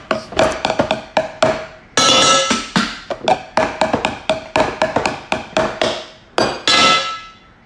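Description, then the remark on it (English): Loud, rapid banging on metal pots in an uneven rhythm, each strike ringing with a bright metallic tone, broken by a few longer clattering bursts. No one speaks. “right after I bend some pots.”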